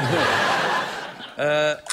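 Laughter fades out, then a game show buzzer sounds one short, flat, harsh blast lasting about a third of a second, followed by the start of a second buzz.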